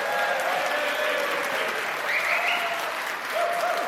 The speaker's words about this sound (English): We're recording the podcast live in the main hall at Astrofest in London. Cue wild applause.